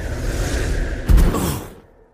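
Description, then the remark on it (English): A rushing gust of wind roars steadily, surges into a sudden heavy buffet midway, then trails off into quiet. It is a gust strong enough to knock a person face first into deep snow. No voices are heard. “suddenly a gust of wind bowled me over, slamming me face first deep into the white powder.”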